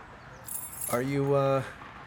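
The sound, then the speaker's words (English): A quick, bright metallic jingle of a set of keys on a ring, taken from a man's pocket and handed over, with a faded rubber keychain ornament shaped like the state of Virginia, lasts about half a second, followed by a short sustained voiced hum. No words are spoken. “He digs into his pocket and hands you a set of keys.”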